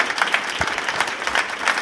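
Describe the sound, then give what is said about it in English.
Steady audience applause, a dense, continuous patter of many hands clapping at an even level for the whole stretch, with no voices standing out. “Yeah, round of applause, please.”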